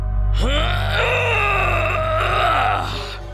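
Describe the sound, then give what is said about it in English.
A man runs at a tree and throws his body against its trunk, letting out one long, loud, strained yell that rises sharply in pitch and then holds, wavering with effort for about three seconds as he strains against the tree, before trailing off over a low steady hum. “… ran toward the tree with a yell and threw his body against its trunk.”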